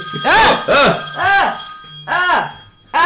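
A telephone rings for an incoming call: five loud, bright, warbling bursts in quick succession, each rising and falling in pitch, with a steady high tone running underneath.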